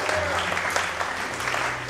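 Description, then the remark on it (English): An audience claps for the Lord together in a dense, steady burst of applause that holds at an even, fairly loud level for the full two seconds, with a low hum running underneath. “Will somebody give the Lord a clap in the house today?”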